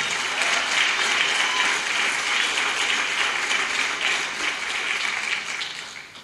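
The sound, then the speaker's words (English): An audience claps steadily in sustained, dense applause to the Lord, a bright crackling wash of many hands that holds loud for several seconds before tapering off at the end. “Give a strong applause to the Lord.”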